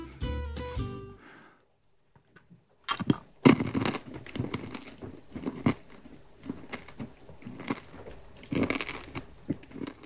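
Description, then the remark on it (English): Wet chewing of a whole piece of food held entirely in the mouth and chewed slowly, with irregular crunchy bites and smacking sounds repeating over several seconds after a brief pause, loud. “And a little bit slower chewing, if that's all right.”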